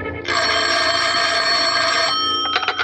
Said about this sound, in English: The phone rang, and I thought twice before I answered it. It was almost 6 o'clock, and I had plans for that evening. But I finally gave in to its yammering.